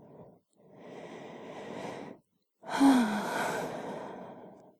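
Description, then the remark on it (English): A person gives a long, breathy yawn with an audible intake and sighing exhale, followed after a brief pause by a second, louder yawn that trails off slowly. Unaccompanied by talk. “All this yawning. It's exhausting.”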